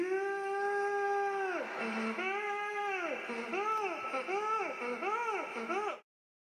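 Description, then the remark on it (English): A voice imitates a crying panda, starting with one long, high wail, then breaking into a rapid run of shorter rising-and-falling sobbing cries, loud and alone without other talk. “I'm gonna imagine this every time I see that panda cry emote.”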